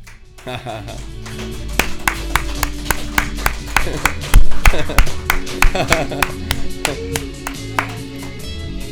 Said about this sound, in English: Since we're clapping, I might as well teach on that.